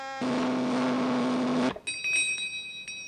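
A flavor meter for testing food buzzes after its button is pushed with plain, ordinary cereal in its slot: a loud, harsh electric buzz drones steadily for about a second and a half, then cuts off abruptly, leaving a thin, high-pitched ringing tone lingering faintly afterward. No one speaks.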